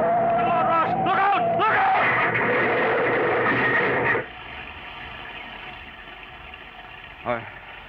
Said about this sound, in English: Ross turned sharply, applied the wet brakes, and careened headlong toward the mountain.